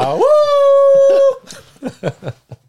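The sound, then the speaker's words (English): A person lets out a loud wolf-like howl, sliding up and holding a steady note for about a second, then breaks off into a few quick spoken or laughing bursts. “Sinfjotli really howled. He knows how to howl.”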